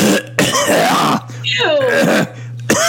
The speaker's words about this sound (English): You want to clear your throat?